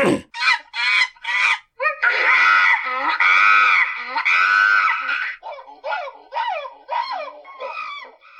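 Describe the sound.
A person imitates monkey noises: a burst of quick hoots, then a long, loud, shrill screech, ending in a string of short rising whoops with gaps between them.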